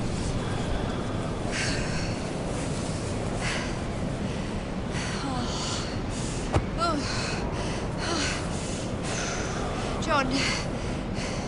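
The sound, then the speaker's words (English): Ragged, gasping breaths of a frostbitten man come in repeated bursts every second or two, labored, over a constant rushing background noise like wind. “He's still breathing.”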